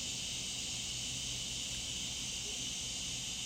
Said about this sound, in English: hopefully that cicada's not too loud.